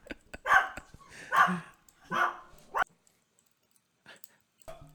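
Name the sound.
dog barking excitedly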